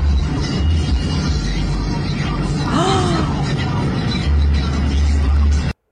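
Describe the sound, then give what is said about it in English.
A big truck drives along a road with a loud, steady engine rumble and road roar throughout. A brief swooping tone rises and falls midway, then the sound cuts off abruptly. “He's a big truck.”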